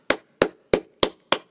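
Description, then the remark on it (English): Someone claps their hands five times in a steady, even rhythm, each clap a sharp, loud smack with a quick decay. No one speaks. “I'm going to just clap for myself.”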